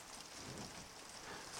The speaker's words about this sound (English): Can you hear the rain coming down even more heavily now? I don't mind the sound of rain as long as I'm not in it.